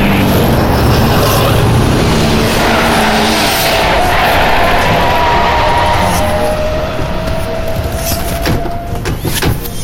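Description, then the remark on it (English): A car engine roars loudly and steadily, its pitch climbing toward the end, as the car is driven through a crowd, amid dense, chaotic background noise with no clear speech. “Use that magic car of yours to drive a wedge through those goons.”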